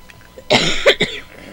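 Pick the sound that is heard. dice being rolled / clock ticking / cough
cough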